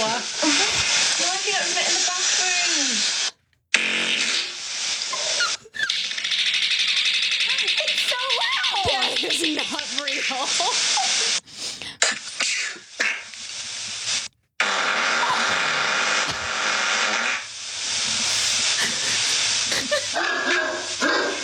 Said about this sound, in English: I put together a bunch of clips of people farting in their sleep from this app that records your sleep talks.